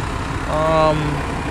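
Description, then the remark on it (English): A big truck engine idles at a bus stop, a steady low rumble throughout, with a brief higher whine rising over it midway before fading back into the drone. “As you can hear, there's a big truck in the background.”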